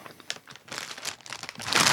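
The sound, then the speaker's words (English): A bag of kettle-cooked tikka masala chips crinkles and crackles as it is torn open, with irregular bursts of crisp, high-pitched rustling that swell into a louder, sustained crackle at the end; no one speaks. “We're not going to act and pretend like we haven't had the tiki masala chips.”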